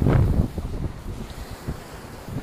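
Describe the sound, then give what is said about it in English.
Ocean waves at a sandy beach wash in a steady, broad rumble, swelling loudly at first and then rolling on beneath gusty wind buffeting the microphone, with no voices present. “I can hear the waves.”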